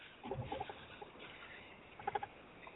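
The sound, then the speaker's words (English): Quiet crinkly rustling of grocery bags being unpacked, in two short bursts of crackling and scratching, separated by a stretch of faint background noise. No one speaks. “Sorry, I was unpacking some groceries. If you were hearing rustling, that's what that was.”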